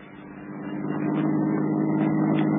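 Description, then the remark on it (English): A car engine hums with a low, steady drone, swelling louder over the first second and then holding at a constant level as the car heads for the Sun Soon Hills, with no voices. “Come on, let's join in the car.”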